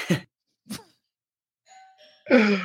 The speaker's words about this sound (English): Ding dong.